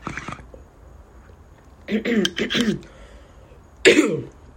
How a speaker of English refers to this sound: I feel a cough coming.